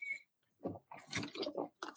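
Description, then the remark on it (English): Someone drinks water: a brief sip, then a run of four or five short, wet gulping and swallowing sounds in an uneven rhythm, fairly quiet, with no talking. “So please allow me some space to do that now after I drink some water.”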